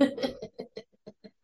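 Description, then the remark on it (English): A coughing fit: a harsh, noisy first burst, then five or six shorter, softer hacks that trail off unevenly over about a second and a half. “Sorry, I had to cough there and I was like, oh, I need water.”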